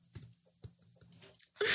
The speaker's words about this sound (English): That's a 40-year-old yawn, huh? Yeah. So. He was like, oh, it's because I'm 40.